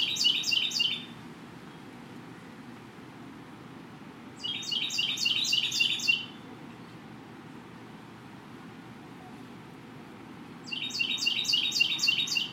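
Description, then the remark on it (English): A bird chirps right overhead at a pagoda, in three bright, rapid bursts of high trills separated by pauses, over a steady low rumble of background noise. “Birds in particular. And it sounds like one is right over my head.”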